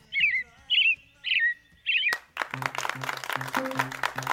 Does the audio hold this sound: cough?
no